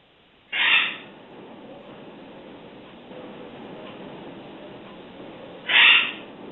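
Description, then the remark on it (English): A caller's pet bird in Oakville squawks loudly twice, short harsh calls about five seconds apart, over a steady muffled, telephone-like background hiss with no talking. “Somebody's got a bird or something.”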